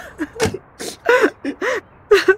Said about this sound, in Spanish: ¿Y por qué tú estás llorando? Es un reflejo, es como el bostezo. Siempre lloro cuando veo a otra gente llorar.